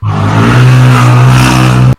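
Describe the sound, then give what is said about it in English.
A motorcycle or dirt bike engine roars loudly as it goes past, a buzzing, steady drone for about two seconds before cutting off abruptly. No voices are heard. “That, ladies and gentlemen, was a motorcycle or dirt bike going past.”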